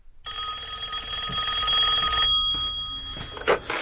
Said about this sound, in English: I drove back to Hollywood. The phone was ringing as I stepped into the office.